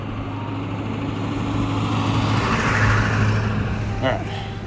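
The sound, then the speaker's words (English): Early in the morning, on a windy roadside walk, trucks rumble past on a road, a steady roar of engines and tyres that swells to a peak midway and eases off. A brief voice cuts in near the end. “Yep, early in the morning, so all the trucks are out.”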